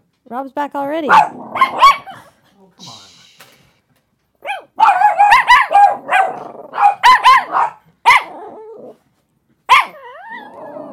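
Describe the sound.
Several dogs in a room bark in loud bursts, with yelps and a few whiny notes mixed in, while a person speaks briefly between the barks.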